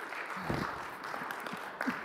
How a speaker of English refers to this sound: You know, I hadn't intended to say this, but just want to remind you that clapping isn't about keeping time. Biblical clapping is actually an expression of praise to the Lord.